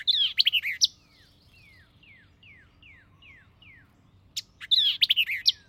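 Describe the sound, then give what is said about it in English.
A songbird sings loudly in thick, bushy growth in low, swampy ground: rapid, sharp bursts of chattering notes framing a steady series of about seven clear, descending whistled slurs, with no voices. “I meet the latter bird only in the thick, bushy growths of low, swampy localities, where, eluding the observer, it pours forth its song with a sharpness and rapidity of articulation that are truly astonishing.”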